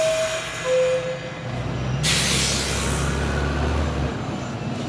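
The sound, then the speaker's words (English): Riding on a moving train: steady low rumble with faint tonal whines, then a loud, sustained hiss of air brakes for about two seconds before settling back to the rolling drone. “I just wasn't prepared to like be on a train to the dentist.”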